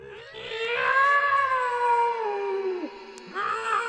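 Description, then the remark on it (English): A long, shrill, drawn-out cat meow comes from a pond, wavering loudly for a few seconds, then drops in pitch and breaks off, followed by the start of another high cry. “Instead, she heard a shrill meowing and a voice coming from the pond.”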